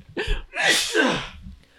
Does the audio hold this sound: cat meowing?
no